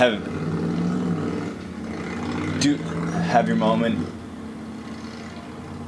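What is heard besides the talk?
motorcycle engine revving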